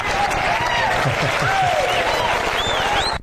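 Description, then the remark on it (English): Audience applause: a dense, steady wash of many hands clapping that lasts about three seconds, with a few faint whistle-like tones riding over it before it cuts off abruptly. “Well, absolutely, you deserve that applause.”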